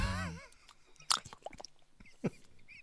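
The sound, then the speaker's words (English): A brief voiced hum opens, then a mouth imitates crunchy chewing of crickets with an irregular run of crackly snaps and smacks, two of them louder than the rest. “Crunchy, crunchy crickets.”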